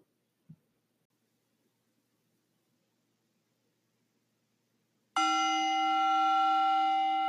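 After several seconds of near silence, a meditation bell is struck once to signal the beginning of a meditation, its loud, bright, layered tone ringing out and sustaining steadily without fading through the end.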